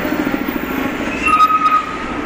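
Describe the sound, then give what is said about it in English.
A continuous low rumble of heavy city bus traffic, with a steady electric whine and brief higher squeals rising over the engine drone as buses pass by on a street. “I think you can hear more of the buses as they go by here.”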